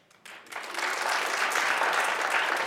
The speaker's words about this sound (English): Clap of hands.